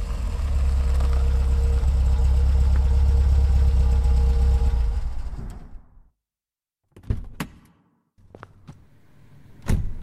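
A car engine idles with a steady low rumble for about five seconds, then cuts out, leaving silence broken by a few sharp door clunks and rattles.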